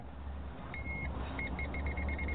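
A voltage tester gives a steady high-pitched tone, then switches to a quick run of short, evenly spaced beeps over a low background hum. No one speaks.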